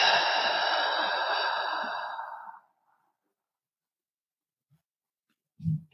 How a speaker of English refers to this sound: And then as you exhale, open and exhale through your mouth. So inhaling in through your nose, deep into your belly. Exhaling out through your mouth.